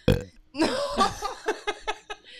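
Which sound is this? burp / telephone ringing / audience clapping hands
burp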